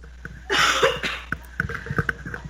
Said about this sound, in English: Excuse me, I need to clear my throat.